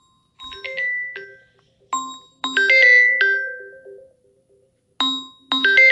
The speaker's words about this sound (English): Then, so, what was I saying before I got interrupted with a phone call? I should turn my phone off while recording.